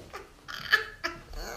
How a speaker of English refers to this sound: Now the dog has a tennis ball that is making noise.